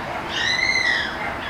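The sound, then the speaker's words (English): A parrot lets out a single drawn-out, high-pitched squawk that rises and falls, rising over a steady background hiss with no one talking. “Apparently I'm overhearing an execution of a parrot.”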